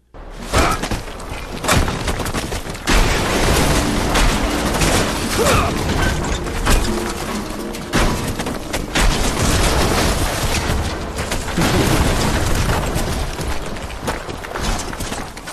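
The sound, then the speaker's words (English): The sledgehammer from the video game Red Faction smashing again and again, with heavy crunching impacts and clattering debris filling a loud, continuous stretch of destruction without any talking. “Is that the Red Faction hammer?”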